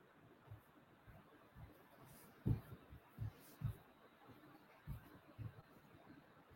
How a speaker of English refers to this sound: I invite you, as your hand is on your heart, as you feel your lungs fill up and empty out, to feel your heartbeat. Maybe tap on your chest along with it.